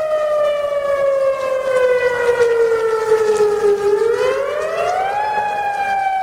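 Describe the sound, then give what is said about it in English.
An outdoor tornado warning siren wails loudly and steadily, its harmonic tone slowly falling in pitch and then rising again, with no voices present. “That's the unmistakable sound of an outdoor tornado warning siren being activated.”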